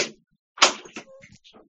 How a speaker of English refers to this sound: As it's last call, apparently everyone's leaving. I just heard the door close, so we'll leave it at that.